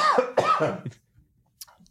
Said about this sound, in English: He quit the podcast in mid-cough.